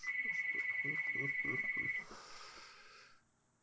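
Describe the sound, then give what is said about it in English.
A phone rings with a call from the hospital, a steady, high electronic trill for about two seconds while someone talks underneath, then it cuts off and a quieter murmur trails away. “That's the hospital ringing.”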